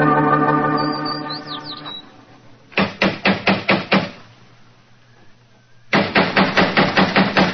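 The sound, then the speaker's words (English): A steady buzzing tone gives way to two loud bursts of rapid knocking on a door, each about six or seven sharp raps, separated by a short pause. “If he's home, why the devil doesn't he answer the door?”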